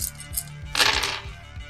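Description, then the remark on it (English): Eight dice clatter and rattle together in a short burst of overlapping clicks, with a few lighter taps just before, fairly loud over a quiet low background. “So it's 8 dice.”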